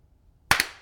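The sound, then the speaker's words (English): Two sharp hand claps, done as a slate clap, land a split second apart, slightly out of sync, followed by a short echoey ring-out in an otherwise quiet moment. “Should we do a clap? A little slate.”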